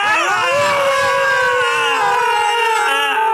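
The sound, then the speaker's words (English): Several people imitate a dog screaming in pain, letting out a loud, sustained wailing scream together for about five seconds, high and wavering like a howling, yelping dog, holding one long drawn-out pitch without words. “I think we should all just scream for 5 seconds to give the readers just an idea of what it might have been like.”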